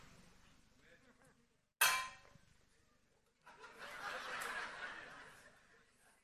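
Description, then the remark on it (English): A single loud gong strike, struck to mark a powerful statement, cuts through the quiet, its bright metallic ring fading within a second, followed by a swell of noisy crowd reaction. “Every time you hear something very powerful, you'll hear a gong.”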